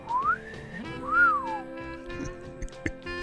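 A classic two-part wolf whistle: a quick rising glide, then a longer swoop that climbs and falls away. Clear and close, with only faint background noise and no talking.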